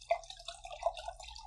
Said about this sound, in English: Well, I'm going to pour this, and then you get into talking about your wine.